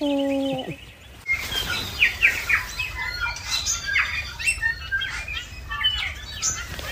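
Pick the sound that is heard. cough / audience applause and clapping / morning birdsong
morning birdsong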